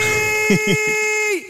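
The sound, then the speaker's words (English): A loud, sustained air horn blast holds a steady, brassy tone for over a second before its pitch sags and cuts off, with a voice briefly talking underneath. “Can I get an air horn though?”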